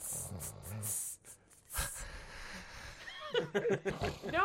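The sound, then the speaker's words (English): A person imitates a snore with breathy, rattling snorts and hisses, followed by a burst of rising, squeaky vocal noises toward the end. “The cone head snore, and I'm like, I don't know.”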